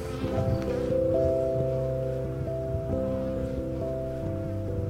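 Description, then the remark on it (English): A steady, droning buzz of bees, several overlapping hums shifting pitch slightly as they move around the edge of a hive, one bee hauling around the edge, continuous for the whole stretch with no talking. “Look at this bee. She's like hauling around the edge of the hive.”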